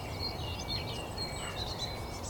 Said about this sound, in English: Surrounded by nightingales. Yeah, it's that end of their call that you can pick up from further away.